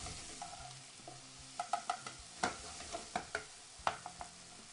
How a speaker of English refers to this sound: You hear that? Take a good listen to that. It's nice and it's sizzling up.